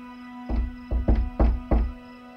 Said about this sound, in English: I knocked firmly but warmly, a friendly rat-a-tat-tat.